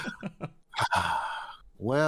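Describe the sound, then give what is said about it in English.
A few quick breathy huffs lead into a sharp, loud intake of breath, then a drawn-out voiced exhale and a rising, theatrical vocal note, an overdone gasp. “Well, this is a, what do they call it? An exaggerated gasp.”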